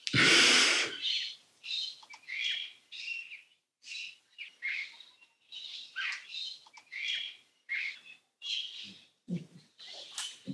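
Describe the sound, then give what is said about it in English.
Birds sing in a steady run of short, bright phrases and chirps on a breezy afternoon at the end of summer, after a brief loud gust of wind at the start; no voices. “Listening to the birds on a breezy afternoon in summer, at the end of summer.”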